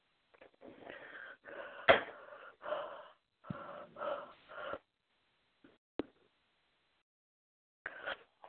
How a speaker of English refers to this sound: Can you tell that person on the line who's snoring or breathing heavy to quit it, to mute himself?